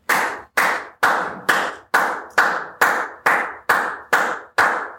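A single person clapping their hands in a slow, steady rhythm, about eleven sharp claps, each ringing out briefly before the next. No voices accompany it.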